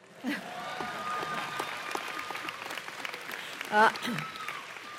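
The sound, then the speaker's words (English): A large audience applauds steadily for several seconds at a UC San Diego university commencement, a dense wash of clapping with a few louder bursts. “You can now applaud.”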